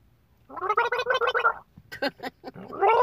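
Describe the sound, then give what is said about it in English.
Wet, bubbling gargling of water in a throat, a loud rapid rattle for about a second, then a few sharp spitting or sputtering bursts before the gargle starts up again. “I'm gargling water. I'm trying to fucking soothe my fucking throat.”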